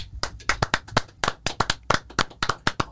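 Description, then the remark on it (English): Hands clap rapidly and steadily, about twenty sharp, crisp claps in quick succession, fairly loud, with no one talking, given as big claps in congratulation to baseball player Luke Voit. “Big claps to Luke Voit.”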